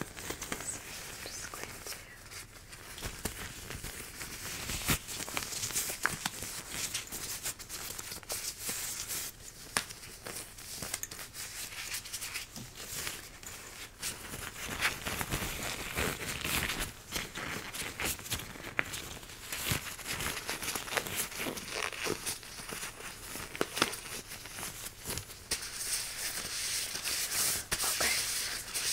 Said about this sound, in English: So before we begin, I'm just gonna put on some gloves for sanitary reasons.